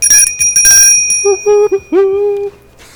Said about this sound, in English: I was wondering if the bell was a real bell or like a programmed thing. This is a brass bell.